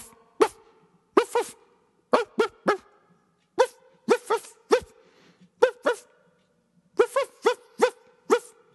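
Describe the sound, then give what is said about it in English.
A person imitates a dog barking, giving a series of short, sharp yaps in quick pairs and triplets, fairly loud, with brief pauses between bursts and no other talk. “I think it sounded like a dog.”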